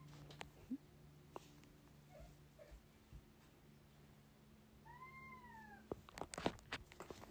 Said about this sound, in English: I mean, you can even hear my cat in the background.